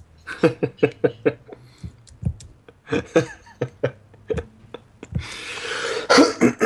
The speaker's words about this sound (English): That cough must mean it's the start of the Chips and Bits podcast.